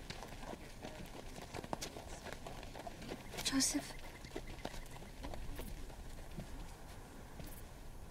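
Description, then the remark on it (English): The hooves of a donkey carrying a rider clip-clop at a steady walking pace throughout, a regular patter of knocks, while a voice speaks briefly over the rhythm. “And you could go be registered without having to drag me on this donkey for 5 days.”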